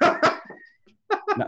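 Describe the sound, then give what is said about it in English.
Dogs bark in two quick bursts, a pair of sharp barks, a brief high whine, then three more barks in fast succession, loud with no one talking. “All the dogs are barking.”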